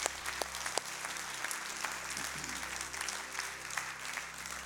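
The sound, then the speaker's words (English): A church audience claps their hands for Jesus after a prayer in a steady, dense wash of applause, many overlapping claps forming a continuous crackling sound with a few sharper slaps standing out, fairly quiet overall. “If you love Jesus, let me hear your hands.”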